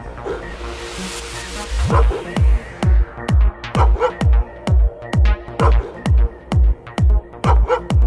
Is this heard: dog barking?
yes